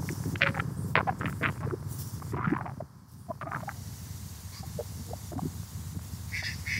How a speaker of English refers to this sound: See that duck just laughed at me over there. See that? Look at these ducks over there. They're laughing at me.